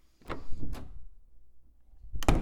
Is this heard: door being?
yes